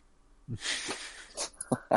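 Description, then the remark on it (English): A person sniffs sharply through the nose in a few breathy, hissing bursts over about a second, followed by a couple of short, low voiced grunts. “I'll do the nose sniff thing.”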